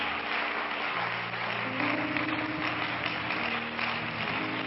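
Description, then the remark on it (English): A church audience applauds steadily, clapping in praise of the Lord at a morning worship service. Many hands clap at once in a dense, continuous roar that stays loud for several seconds, with a low sustained tone underneath and no talking. “Why don't we all give the Lord a hand clap of praise today?”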